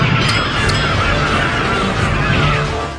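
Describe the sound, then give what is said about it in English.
A voice imitates the little armies in the game Suikoden 2 rushing at each other when units meet on the map: a dense, continuous din of tiny shrieking cries, honking and squawking, steady and loud throughout, with a couple of sharp bright slash-like accents near the start. “Just a bunch of tiny people screaming, and with a few slash noises.”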